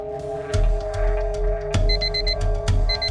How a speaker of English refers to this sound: This is an alarm. You must be at the Nomad meeting with ISO in 15 minutes.